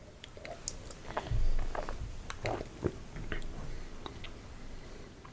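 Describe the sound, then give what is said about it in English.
Someone takes a quiet sip of beer, with soft slurping, wet mouth clicks and a gulp scattered over a few seconds, and no talking. “take another sip.”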